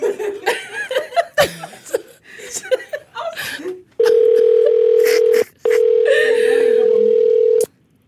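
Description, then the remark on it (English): After some chuckling and laughter, a phone line's ringback tone sounds twice: a long, steady, loud electronic tone, a brief pause, then another long tone that cuts off. “Okay, let me call her back.”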